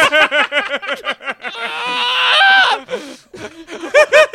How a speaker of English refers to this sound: No, that's just how I scream.